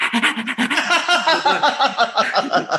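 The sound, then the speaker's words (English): A person imitates a dog panting: quick, breathy huffs repeating in a steady rhythm for a few seconds, fairly loud, with no words spoken. “And the dog is panting.”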